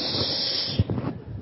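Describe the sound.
A steady, breathy hiss of air escaping a balloon runs for under a second, then tapers off into softer sputters and low fluttering puffs.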